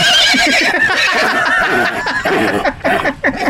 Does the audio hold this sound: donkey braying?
yes